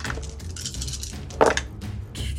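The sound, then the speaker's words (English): Dice, rolled for the 4d6 fire damage of a Scorching Ray spell, rattle and clatter against a hard surface in a quick scatter of clicks, with one louder, brighter clack near the middle before the tumbling settles. No one speaks. “Let me get some more dice.”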